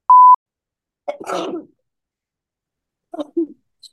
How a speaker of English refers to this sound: Those are cute sneezes. My coworker says I sneeze like a baby.